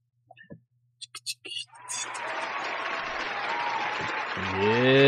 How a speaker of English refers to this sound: They love the analysts. They love you, man. They're out here clapping and everything for you.